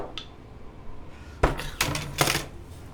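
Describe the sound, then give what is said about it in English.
Dice clatter across a hard surface in a quick series of sharp, bright clicks and rattles, bouncing a few times before settling on a 13. No one speaks. “The stress that that dice gave me just now, so it's a 21 for Hawk, but it landed on a 13, but it was very nearly a 1, and I was like, like, no, please don't.”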